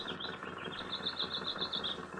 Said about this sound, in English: his figure, silhouetted in the driver's seat, would be lost from time to time in the great cloud of wheeling, crying birds which followed his movements. And I remarked on this. Lots of birds around today.